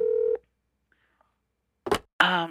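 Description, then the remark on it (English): The tail end of an outgoing call's ringback tone, a steady buzzing tone, stops; after a short silence there's a click of the line picking up and a voice starts answering. “All right, the phone is ringing.”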